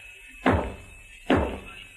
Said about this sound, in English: You crazy. What are you banging on the wall for?